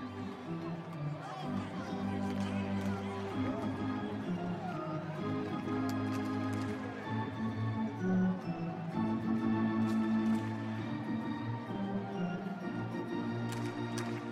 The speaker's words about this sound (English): The game hasn't begun yet. Everyone's getting hot dogs, getting beer. While the crowd makes its way to the seats